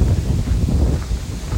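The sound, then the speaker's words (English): Steady wind buffets the microphone, producing a loud, continuous low rumble with gusty fluctuations throughout, and no voices can be heard. “It is windy. I know.”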